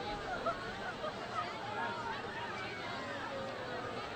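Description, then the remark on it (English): Steady crowd chatter at a high school football game at Sycamore, with fans of the home Aviators and the Tigers and a student section a couple of hundred deep: many overlapping voices blend into an even, continuous murmur with no single speaker standing out, holding a constant moderate level throughout. “Still an excellent crowd in attendance here at Sycamore, not only for the home Aviators, but also the Tiger contingent.”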